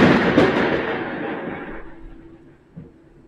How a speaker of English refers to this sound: Did you see... Well, obviously you didn't see because you're on Skype, but oh my god, that bolt of lightning was so close to my house. Was that... I thought that was a bolt of lightning, but holy... I was about to say the other word.